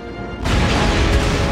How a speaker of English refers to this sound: Very unfortunately, this is one of the starship explosions where the people don't materialize on the transporter pad an instant after we see the ship explode in space. We get a puff of smoke instead.